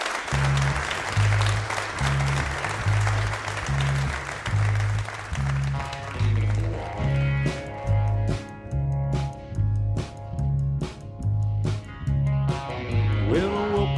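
Audience applause at a Red Barn Radio show rises over a steady, pulsing bass groove, then fades after several seconds as the live band continues playing with sharp drum hits and sustained melodic tones.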